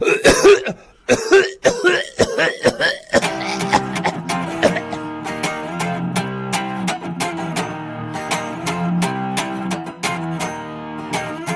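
Several harsh coughs burst out in quick succession over about three seconds, then give way to steady music with a regular beat.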